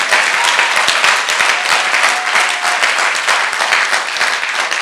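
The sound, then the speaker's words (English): An audience bursts into sustained, dense applause, many hands clapping at once in a loud, steady wash of sharp overlapping claps that holds its level throughout. “So even if it's for clapping, do your best for the Lord.”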